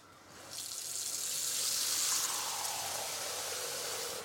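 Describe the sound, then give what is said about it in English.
Warm water at 104 degrees streams steadily from a smart faucet, started by a hand wave, into a bowl, dispensing exactly 2 cups; a broad hissing splash that starts abruptly after a brief quiet moment and runs continuously, fairly loud, with no talking. “And then I wave again and it will dispense exactly 2 cups into my bowl for me.”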